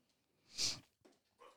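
A dog named Simba sniffs loudly at a man's ear, one strong airy, hissing inhale followed by a couple of shorter, softer snuffles. No one speaks.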